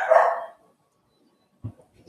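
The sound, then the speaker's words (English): A dog gives one loud, full bark, then a stretch of silence follows before two shorter, sharper barks cut in near the end, with no voices. “Yay, dog barkings.”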